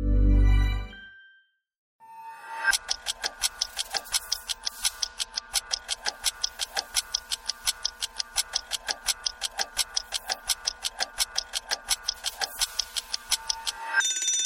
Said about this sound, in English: All right, 15 minutes on the timer, and the subject is mental health.